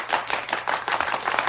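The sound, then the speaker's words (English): A short burst of applause: many hands clapping in a dense, steady patter at a fairly even loudness, with no voices over it. “Believable applause.”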